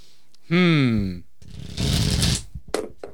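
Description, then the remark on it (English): A short burst of tarot cards being shuffled, a papery riffle lasting under a second, comes right after a brief spoken sound, followed by a few faint clicks. “Okay, I'm shuffling.”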